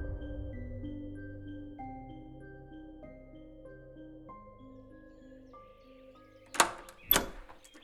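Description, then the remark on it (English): The front door of a musty house opens with two solid clunks near the end, following a long stretch of low, sustained musical tones that shift slowly in pitch. “The front door opened and the real estate agent led Frank and Helen Morgenstern into the vestibule of the musty house.”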